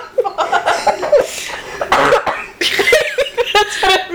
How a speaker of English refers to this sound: That sounds like when you bury your head in a pillow. I've heard that sound before. When I'm coughing.